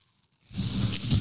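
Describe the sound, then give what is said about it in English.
After a short silence, a loud, crisp crunch of someone biting into a Honeycrisp apple breaks in, followed by a continuous crackly, wet chewing noise with no talking. “That's got to be a Honeycrisp apple.”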